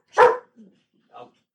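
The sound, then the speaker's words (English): A dog barks once, loud, followed by a soft low grumble and a second quieter, shorter bark about a second later. “Yeah, it picks up the dogs really well.”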